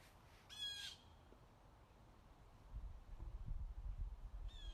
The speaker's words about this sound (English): The bird agrees. You do, don't you?